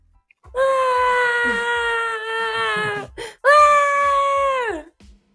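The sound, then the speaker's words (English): Someone imitates a crying baby with two long, sustained wails, the first steady and drawn out, the second shorter and sliding downward at the end, loud and with no other talk. “Pretend to cry like a little baby.”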